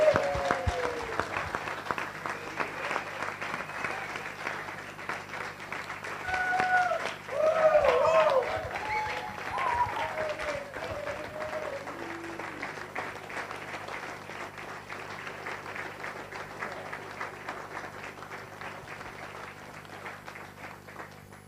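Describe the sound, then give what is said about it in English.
An audience claps steadily for about twenty seconds, a dense crackle of many hands, with a few voices calling out midway before the applause carries on evenly to the end. It is a round of applause for a colleague's career before a presentation. “So before we get started, I think just like to have a round of applause for the incredible career”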